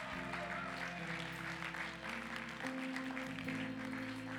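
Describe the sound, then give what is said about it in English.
A standing audience at Awakened Church gives God a clap in a dense, steady wash of clapping that lasts the whole time, with sustained low keyboard chords holding underneath. “Come on, give God a clap if any of that made sense to you.”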